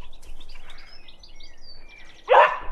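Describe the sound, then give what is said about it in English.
A single loud bark from the dog Joey, at pigeons flapping in next door's tree, breaks in near the end, after a stretch of quiet outdoor garden ambience with birds chirping and tweeting in the background. “Joey's trying to tell me that there are some pigeons getting it on in next door's tree.”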